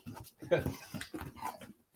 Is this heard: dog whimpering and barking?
yes